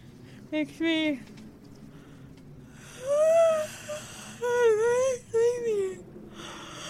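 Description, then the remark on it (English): Several people yawn in turn, testing whether yawning is contagious: a short breathy yawn, then longer drawn-out voiced yawns that rise and sag in pitch, a few overlapping, with brief pauses between them. “We all have to yawn, and whoever doesn't catch it is a sociopath.”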